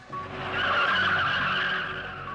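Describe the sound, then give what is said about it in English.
A car swerves with tires screeching in one sustained, loud skid that swells quickly and holds for a couple of seconds, as a person reaching in through the window pulls the driver's hair and makes her drive erratically, with no voices. “the patient reaches down, pulling on her hair and causing her to drive sporadically.”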